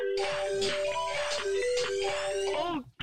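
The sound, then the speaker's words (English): An iPad ringtone for an incoming call plays a bright, stepping electronic melody of sustained tones, fairly loud and continuous for about three seconds before cutting off, with no one talking over it. “Phone ringing, man. It's my iPad ringing up.”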